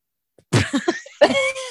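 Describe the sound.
A person blows a wet, sputtering raspberry with their lips into a microphone, imitating a fart, fairly loud, in two bursts: a choppy spluttering one, then a longer buzzy one with a squeaky tonal edge.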